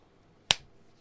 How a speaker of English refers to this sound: All right, that's the clap I'm going to use.